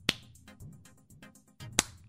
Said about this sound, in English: Okay, I think basically I'm just clapping. Let me try. That's a whole lot of high fives I'm giving myself. Hold on. Yeah, I think it's just clapping, buddy.